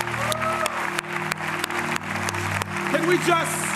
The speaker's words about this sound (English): Can we clap for Jesus this morning, church? Come on.